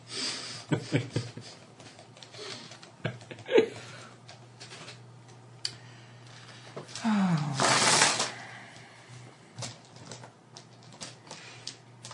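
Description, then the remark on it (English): A handful of dice being gathered clicks and clatters, with scattered sharp taps followed by a denser rattling burst partway through, then a few more light knocks as the dice settle. “See, I told you, he's getting his dice soon.”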